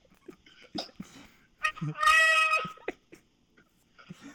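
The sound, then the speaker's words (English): A person imitates a cow's moo: one loud, drawn-out call with a strained, cracking voice, surrounded by a few short breathy vocal sounds and clicks. “Moo with the voice breaking and everything.”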